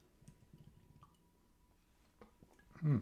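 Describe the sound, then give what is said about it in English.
A big sip of beer: faint wet clicks and small liquid sounds, then one loud, low gulping swallow at the very end. No one speaks. “And actually, before that, let's take a sip of the cerveza.”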